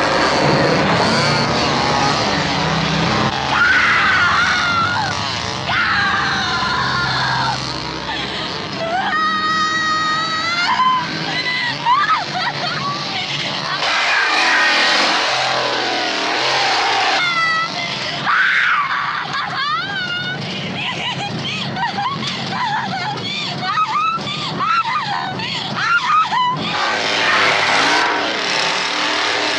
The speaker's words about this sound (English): So they eventually drive away as Sally breaks down and laughs while Leatherface angrily swings his chainsaw around in anger and defeat, doing that Leatherface chainsaw dance that closes this film out.